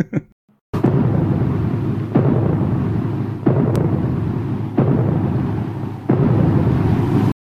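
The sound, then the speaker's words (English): Doors bang outside, four or five heavy thuds spaced roughly a second and a half apart, each cutting through a loud, constant rushing roar with no voices. “Something banged outside. Oh, the doors are banging.”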